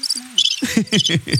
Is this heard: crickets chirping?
yes